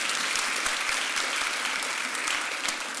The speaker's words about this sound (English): I'm excited because I get the opportunity, the blessing, the privilege, the honor to be able to lead my children in the student ministry. I love being here as a youth pastor here, but yeah, you can clap for that.